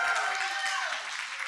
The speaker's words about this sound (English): So round of applause, big cheers, whoops, hollers. Thank you.